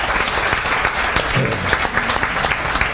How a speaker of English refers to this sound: We're live from the Triple R Performance Space today. We have an audience that is about to cheer in a moment when I remind them that Liv is here doing our Twitter feed.